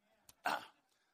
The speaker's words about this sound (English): My wife says I shouldn't do that all the time. But I did. Actually, it's the only way I can clear my throat and you guys think it's part of the sermon.